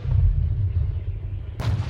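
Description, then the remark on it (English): Heavy gunfire and artillery from an aerial battle between planes, a dense, booming low roar that churns steadily before a sharp, bright blast bursts in near the end. “Machines roar and shudder, guns blaze, flames spurt from crippled planes cascading across the sky in a fiery symphony.”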